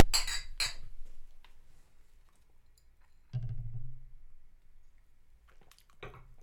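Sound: glasses clinking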